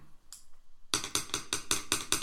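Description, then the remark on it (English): A pencil tapped out as a quick drum roll: after a brief quiet pause, about eight sharp, clicky taps follow in a steady, fast rhythm, bright and fairly loud, with no talking. “Can you do a little drum roll?”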